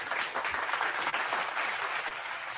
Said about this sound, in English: Give a round of applause for that guy.